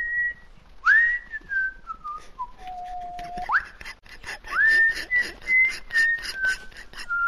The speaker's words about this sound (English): And my second entry to the hate list is whistling. Whistling. Well, just in general.